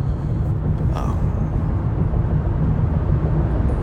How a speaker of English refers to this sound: Remember, guys, I'm driving a car.